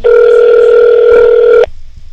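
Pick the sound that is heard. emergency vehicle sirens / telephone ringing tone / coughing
telephone ringing tone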